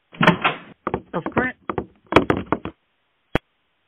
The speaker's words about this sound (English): Whoa, the kitchen door bursts open.